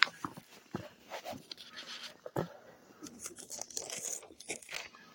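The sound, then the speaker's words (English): Crisp rustling and crinkling of a paper page being turned, with several short crackly bursts over about five seconds and no voices. “I'm sorry, I'm turning the page.”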